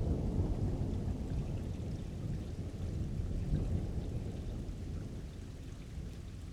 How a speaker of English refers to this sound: A really hard rain that washes the dust from the city, clearing out streets, watering plants, and cleaning the air itself.